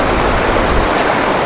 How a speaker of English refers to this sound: Oh, there's a little waterfall. Wow. This is a bridge.